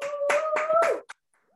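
A short burst of clapping, four or five loud, quick claps, with a steady rising tone like a cheer or whoop sounding over them, then one last clap before the sound drops away.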